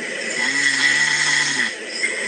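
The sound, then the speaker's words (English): A single drawn-out snore, played back from a phone recording: a rough, buzzy rumble with a low droning tone that lasts about a second over steady hiss, with no talking. “Oh, it records your snoring. That's your snoring?”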